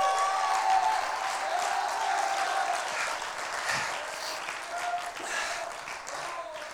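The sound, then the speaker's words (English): An audience applauds steadily, a dense, even wash of clapping that holds at a loud level throughout with scattered voices mixed in. “You ought to clap.”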